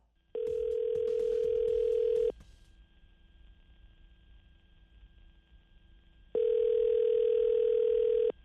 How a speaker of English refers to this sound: So let's go ahead and make that phone call. Exciting.